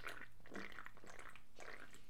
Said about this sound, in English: Yeah, let me just take a gulp of this delicious Pepsi Max.